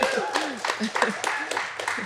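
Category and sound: crowd, audience round of applause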